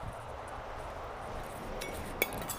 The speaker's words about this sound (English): Drop my water bottle. Nothing in it though.